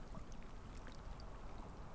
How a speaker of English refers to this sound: And as the water laps up onto the shingle,